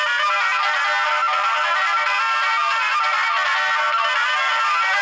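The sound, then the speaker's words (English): Several telephones of a radio call-in show ring at once, ringing off the hook in a dense, continuous electronic chorus, overlapping trills filling the whole stretch at a steady, fairly loud level with no talking. “They're absolutely ringing off the hook here, so let's get in there.”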